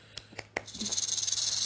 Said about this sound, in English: A snake. A rattlesnake.